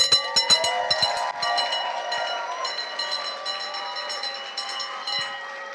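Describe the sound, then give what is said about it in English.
A handbell is rung rapidly during a church service, about eight bright clanging strikes in the first second and a half, then its metallic tone rings on and slowly fades, with a few softer taps later. “So anytime there's a healing, anytime there's a miracle, we're going to ring the bell.”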